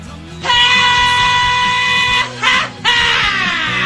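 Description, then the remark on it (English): A loud, piercing scream sound effect used to lead into the news on a radio talk show, one long sustained shriek followed by a short burst and a final wail that slides downward in pitch. “Mr. Scream, can you take us into the news, please?”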